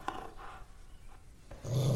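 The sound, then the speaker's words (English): A dog growls low, a rumbling snarl that starts quietly with a few huffs and swells into a loud, sustained growl near the end. “He's a great dog, but he's a bigot.”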